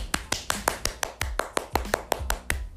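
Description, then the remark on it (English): A quick, steady run of about fourteen sharp hand claps, roughly five per second, each crisp and bright, with no voices over them. “So first of all, I just want to give myself and everybody else a hand clap.”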